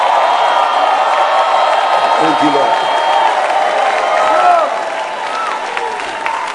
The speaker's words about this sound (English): Somebody, clap your hands. Shout. A shout of victory.